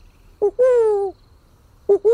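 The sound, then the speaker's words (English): A person's voice imitates a San Diego burrowing owl call: a short rising note followed by a long, gliding hoot, then the two-part call starts again. It's fairly loud, with no talking. “This is my version of a San Diego burrowing owl.”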